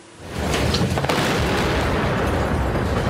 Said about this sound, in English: A massive airstrike shattered the fragile ceasefire in Mariupol late this afternoon.